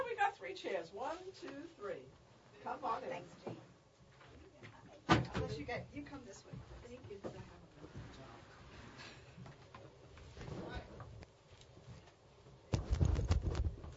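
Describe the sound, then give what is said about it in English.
A microphone in a studio is jostled and handled, giving irregular thumps, knocks and rubbing rumbles, with a sharp bump midway and a dense burst of rough handling noise near the end, amid faint voices. “We were shaking the mic, a little shaking things up here.”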